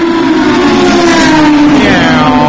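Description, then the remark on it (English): A Corvette race car pulls out at Le Mans at about 3:10 in the morning in cold, still air, its engine roaring with a loud, steady droning note that sags slightly in pitch toward the end as the car pulls away. No one speaks. “What you can't hear is, as that Corvette pulled out, he's got this hot whiff of brake dust and hot oil.”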